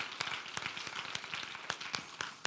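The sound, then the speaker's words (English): A church audience applauding the Lord during a sermon: dense, steady crowd clapping with sharper individual claps popping out of the wash at irregular moments, sustained at a moderate level throughout. “Somebody needs to give the Lord a hand right there.”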